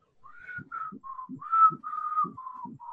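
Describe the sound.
A man whistles a slow, steady melody of sustained mid-pitched notes, each gliding slightly, with soft low thumps or footsteps sounding between the notes as he walks back up the stairs.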